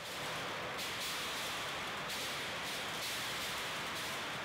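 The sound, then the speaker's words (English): Simulated hail pelting a test house at a research lab in South Carolina: a dense, continuous barrage of hard impacts that blurs into a loud roaring clatter, with brief surges of brighter hiss every second or so. No voices. “You set houses on fire? Yeah, and then pelt them with hail. Here's what that sounds like, thanks to some audio from the research lab's website.”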